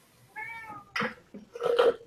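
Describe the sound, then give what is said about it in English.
A household's own pet cat meows a few times in quick succession: first a thin, tonal mew, then louder, rougher cries with a strained, wailing edge. No one speaks. “I hear a cat.”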